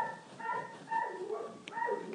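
A dog barks over and over, about four sharp, slightly yelping barks in quick succession, fairly loud with no one talking.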